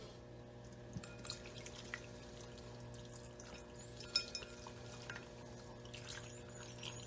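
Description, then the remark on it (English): Freshly boiled water is poured quietly into a container while making ramen noodles, a soft, steady trickle with a few small drips and clinks over a low background hum. No one speaks. “Add some water to it. Just some of the fresh boiled water.”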